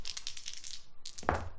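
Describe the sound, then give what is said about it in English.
Nine dice, rolled for a sorcery skill roll using a magic dice pool, rattle briskly in a cup or hand, then spill onto a hard surface with a sharp clatter. No one speaks. “So that is a total of nine dice.”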